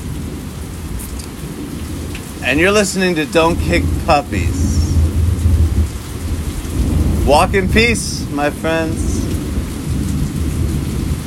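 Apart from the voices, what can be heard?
thunderstorm with rain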